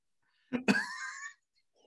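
A person coughs, two quick harsh bursts running into a raspy, drawn-out throaty tail, then silence. No one speaks.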